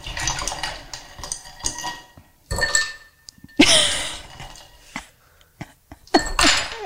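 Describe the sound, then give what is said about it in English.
Fresh ice cubes clatter and clink into a glass in several bright bursts, with a short ringing tone and loud rattling handfuls, separated by brief quiet gaps. “We're gonna add some fresh ice.”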